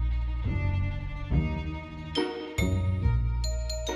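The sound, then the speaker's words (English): Light bells on a shop door tinkle several times in quick succession as the door is opened, bright chiming strikes ringing out over a low, steady tonal background, clear with no one speaking. “You open it, and of course, there's the gentle tinkle of some bells.”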